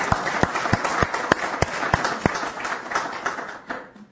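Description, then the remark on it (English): An audience at Calvary Bible Chapel applauds the deacons for their work: dense, steady clapping from many hands, with a few sharper individual claps standing out, holding fairly loud before tapering off at the end. “I would applaud the deacons for their work too.”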